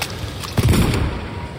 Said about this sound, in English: The explosion crackles across the forest, stopping him dead in his tracks. A gunshot. A gunshot.